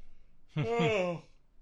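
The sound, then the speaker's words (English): A person gives a single drawn-out, voiced yawn, fairly loud, rising into an open breathy tone that slides downward and trails off over about half a second, with quiet room noise around it. “God, I am yawning like crazy.”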